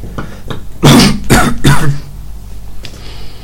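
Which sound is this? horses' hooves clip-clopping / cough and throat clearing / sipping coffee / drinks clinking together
cough and throat clearing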